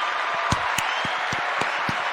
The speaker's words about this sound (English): So I wanted to say, well done, Mr. Honeywell. I want to give him a round of applause. He really earned it.